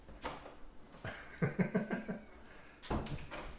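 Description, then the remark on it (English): A door being handled: a few soft knocks and clunks, a brief creaky stretch as it swings open to let a cat in, then another thump near the end, with no one speaking. “I need to get a cat door.”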